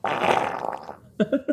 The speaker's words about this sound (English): I just farted in the microphone. Did you guys hear that? You got anything left? I did it just to apologize for farting.